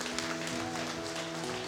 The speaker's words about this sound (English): Come on, church, let's give them a big round of applause.